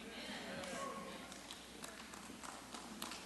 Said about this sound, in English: Yeah, I'm preaching better than that clap, but that's all right.